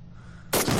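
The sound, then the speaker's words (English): A single loud explosion from a video bursts in suddenly after a low, quiet rumble, its broad roaring blast filling the rest of the moment and sounding powerful. “Let's get a nice big explosion.”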